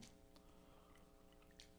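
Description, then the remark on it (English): A person chewing food with a few wet, sharp mouth smacks spaced irregularly over a steady low hum, no talking. “Is my smacking loud?”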